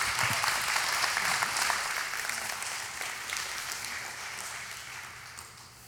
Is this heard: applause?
yes